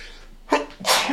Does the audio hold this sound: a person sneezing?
yes